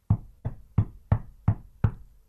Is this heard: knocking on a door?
yes